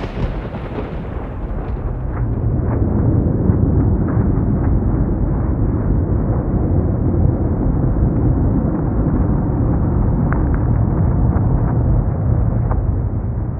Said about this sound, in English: Even in a storm, the deep vibrations of infrasound lurk beneath every clap of thunder.